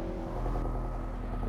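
A steady, loud low rumble of car tires rolling over a bridge, droning continuously with a faint rhythmic thrum and no voices.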